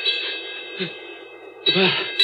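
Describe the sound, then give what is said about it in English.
A bell rings steadily, a bright, sustained metallic tone that holds throughout, while brief bursts of a voice cut in over it near the middle and end. “The bell. Like it did when Curly.”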